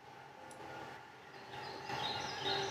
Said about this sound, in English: Birds. Chirping birds. Very peaceful.